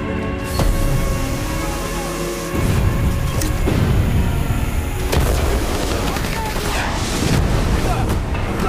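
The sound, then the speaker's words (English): Gunfire during a pirate attack on the ship Alabama: a handful of sharp, irregular shots crack over a constant loud roar and deep rumble, with muffled voices mixed into the noise. “Shots fired!”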